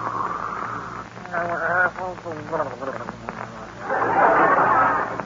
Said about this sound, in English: Oh, listen to those beautiful pear-shaped snores. He sounds like a frog with a man in his throat.